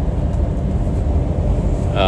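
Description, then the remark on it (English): Steady, loud low rumble of a car overtaking a truck that looks to have rocks in the back, heard from inside the car, with a brief higher-pitched tonal sound right at the end. “Trying to get past this truck because this truck looks like it has rocks in the back, and not trying to break my windshield yet.”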